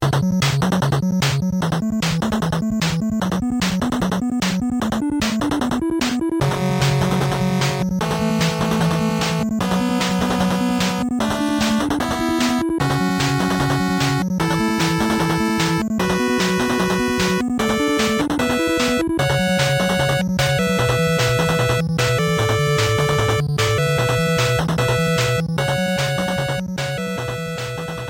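The upbeat Stage 3 theme from the video game Metal Storm, from its soundtrack, in a bright chiptune style: buzzy, stepping bass notes drive a steady rhythm beneath a high, busy melody, playing loudly and continuously with no voices.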